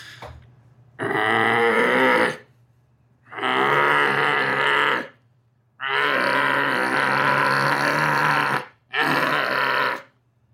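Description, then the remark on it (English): A person imitates a bear-walrus monster, giving a few loud, guttural growls that stretch into a long, rasping roar, then one last shorter roar, with brief silent pauses between each burst. “So we'll start with a few grunts and we'll get the roar going.”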